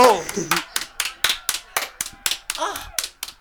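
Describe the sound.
A steady run of about a dozen sharp hand claps in quick, even rhythm, close and fairly loud, with a voice briefly exclaiming at the start and again near the end.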